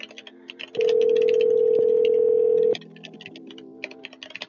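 A single telephone ring on a call to customer support that has been forwarded to an automated system, a steady low buzzing tone lasting about two seconds, while rapid keyboard typing clicks continue before, during and after it.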